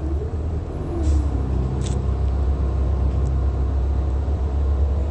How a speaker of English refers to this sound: I'm on a bus, I'm on transportation